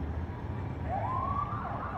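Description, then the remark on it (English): Emergency vehicle sirens rise and wail behind WNBA championship parade buses, over a low, steady rumble of traffic and engines, with no voices present. “You can hear the sirens behind them.”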